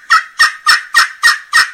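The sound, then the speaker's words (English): Loud, aggressive turkey calling on a glass friction call: six sharp, evenly spaced yelps in quick succession, bright, with no talking. “But I can open that call up and I can get loud and aggressive.”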